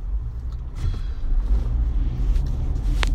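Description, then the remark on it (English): A steady, heavy low rumble of a car on the road in messy Monday commuter traffic, with faint passing whooshes and a brief higher hiss near the end, no voices. “Traffic's a friggin' mess.”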